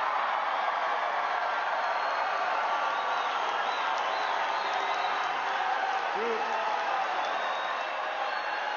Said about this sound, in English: As you could tell, there were a lot of people screaming for that applause line.